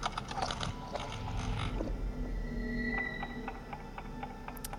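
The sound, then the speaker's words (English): An antique clock mechanism whirs and grinds steadily, with a busy rush of gears in the first half, then lighter ratcheting and a series of faint, evenly spaced ticks and clicks. “This antique clock reminds us of time's fragility, mystery, and will to self-restoration.”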